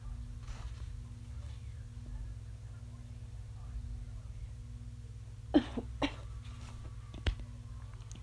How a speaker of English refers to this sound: I have newbie lungs still, and allergies. So if I cough, yeah, that's why.